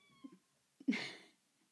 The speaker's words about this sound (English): Can you hear our cat? He is whining so loudly. It doesn't get enough love.